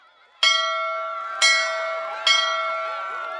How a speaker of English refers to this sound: She was jogging in place like a boxer waiting for the bell to ring. A minute later, it did.